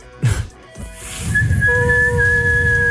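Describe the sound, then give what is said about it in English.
A person whistles steady, high tones with a breathy, airy quality, mimicking wind rushing through holes, after a brief burst of noise at the start; fairly loud. “When he skydives, yeah. It whistles.”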